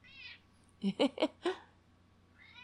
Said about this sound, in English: I love this cat. You're the best, Tara Jr. Jr. Did you know that? You know how good you are? Yes, you do know, don't you? You're good. I love this cat.